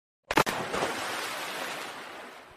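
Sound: water splash sound effect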